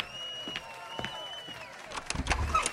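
A door opens with a long, high squeal over a few soft knocks, then a burst of louder clattering thumps near the end.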